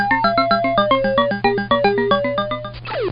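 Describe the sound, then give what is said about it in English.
Chiptune-style music from the arcade video game Dig Dug: bouncy, evenly pulsed square-wave notes over a steady buzzing drone, ending with a quick descending electronic sweep. No one speaks. “This is the game Dig Dug.”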